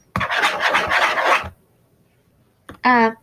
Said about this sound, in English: Not like that sound, that's just a sound of me like scratching my laptop. Don't worry, I'm actually like damaging it. It's like one of them Dell laptops that you can't really damage easily.